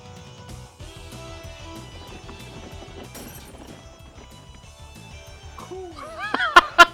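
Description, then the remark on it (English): A camera breaks with a sharp, loud crash in two quick bursts near the end, following warbling sweeps over steady background music. “Broke the camera.”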